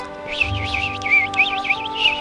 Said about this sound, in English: It was quiet. Actually, the birds were chirping.